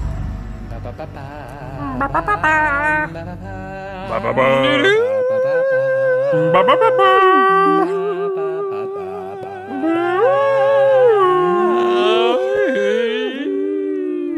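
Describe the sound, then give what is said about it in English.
Dogs howl in long, wavering cries that rise and fall, several voices overlapping loudly for the whole stretch, with no talking. “Dogs everywhere going insane.”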